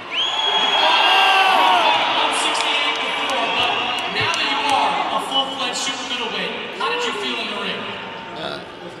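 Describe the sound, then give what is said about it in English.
A dense, roaring Mexican crowd cheers continuously at a Jaime Munguia boxing fight, with overlapping shouts, whoops and raised voices swelling and dipping loudly throughout. “You guys hear that crowd, how lively it is in here.”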